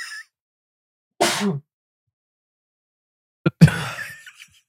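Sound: sneeze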